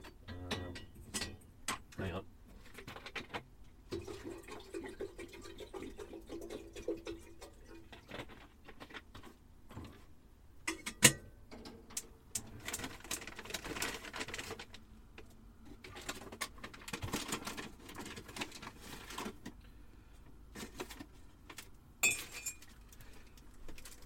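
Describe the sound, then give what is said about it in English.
Tea being made on a boat moored beside another boat: cups and spoons clink and tap in irregular bursts, with scattered sharp knocks and rustles, plus some faint, indistinct voice sounds. “I could have done my usual shouting across the boat while I was making a cup of tea, but because when you have two boats side by side like this, you can hear every single sound.”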